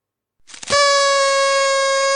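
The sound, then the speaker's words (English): A single loud air horn blast kicks in after a brief rustle and holds a steady, brassy tone for about a second and a half, alone with no talking. “One more air horn right here.”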